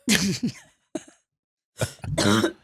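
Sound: cough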